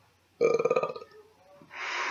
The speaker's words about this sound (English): I keep burping too, and it's disgusting.